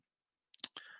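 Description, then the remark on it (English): A few quick pen clicks followed by a brief scratchy stroke of a pen writing on a piece of paper, quiet and isolated with no talking. “The pen is out. I got to write these down. Which, I need a new piece of paper.”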